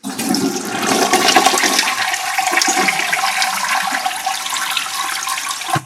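A toilet flushes loudly, a steady rushing swirl of water that fills the whole six seconds before cutting off abruptly, with no voices over it.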